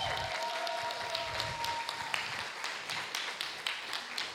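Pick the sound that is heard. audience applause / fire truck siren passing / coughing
audience applause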